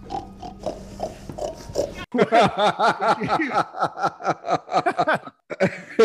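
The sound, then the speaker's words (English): A person imitates a pig, letting out a rapid string of loud, snorting oinks and grunts that follow a brief stretch of quieter background noise. “oink!”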